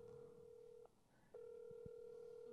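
A phone rings out over a speaker: a steady electronic tone, a brief pause, then the tone resumes, repeating the ringback pattern of an outgoing call waiting to connect.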